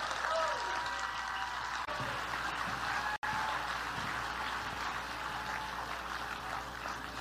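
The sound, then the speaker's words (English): A large, record-setting crowd applauds steadily, a dense, continuous wash of clapping that fills the whole stretch, with faint cheers and whistles mixed into the roar. “Wow. Check out this crowd. This is a record-setting crowd.”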